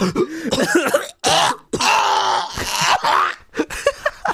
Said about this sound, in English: Don't you ever fucking cough while I'm talking.